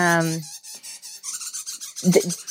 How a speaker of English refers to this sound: Have to stop and tell everybody who's listening what that was. That weird little mechanical thing is actually a tiny little primate that comes out at night here. And it's a little galangal. No. It was my mobile, my ringtone.